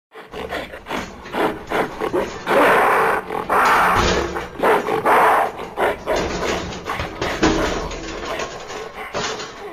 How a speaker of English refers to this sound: But the gorilla was not happy. As Bernal and his accomplices prepared themselves for takeoff, the gorilla growled and grunted, throwing himself aggressively against the side of his cage.